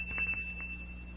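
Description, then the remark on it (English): A faint, thin bell ring from a Flavor Meter machine testing the flavor of a plain, ordinary cereal holds a steady high tone through the whole moment, with a few soft taps under a low background hum and no voices. “The better it tastes, the louder it'll ring the bell.”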